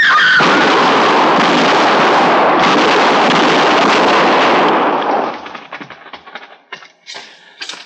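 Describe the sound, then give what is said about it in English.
A loud, dense barrage of gunfire in a shootout roars continuously for about five seconds, then thins out into a few scattered, sharp shots and pops before fading. “Are they dead? I don't know, but the fight's sure out of them.”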